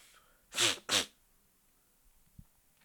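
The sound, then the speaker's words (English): Two sharp sneezes in quick succession, fairly loud, each a bright explosive burst of breath, followed by quiet with faint shuffling. “I got the motherfucking boogers and shit.”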